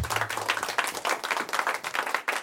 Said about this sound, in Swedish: Ja, det var en trevlig applåd. Det var ingen fotbollsapplåd kanske direkt, men det var en liten, liten publik som fick sitta och applådera under en ganska lång period där för Atalanta.